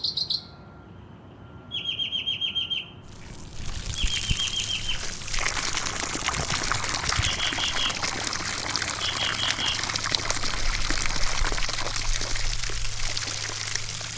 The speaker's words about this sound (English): I'm just watering the California sycamore. These specific trees need a lot of water, so I'm trying to soak very well the roots. I'm trying to put like probably like 20 gallons of water